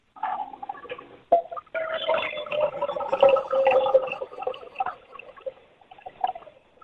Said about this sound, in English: Okay, so you've got your neti pot. Mm-hmm. Wonderful. If you could just fill that neti pot up with some warmish water. You don't want it to be too hot, okay?